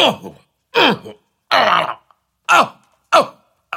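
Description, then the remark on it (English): Five harsh, strained coughs, each a rough, gagging burst followed by a brief pause, as someone chokes on a whole fish stuck in the throat. “I've got fish stuck in my throat.”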